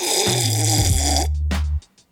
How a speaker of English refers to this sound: I happen to be your host, sitting down here, sipping on some cold coffee, drinking some cold brew.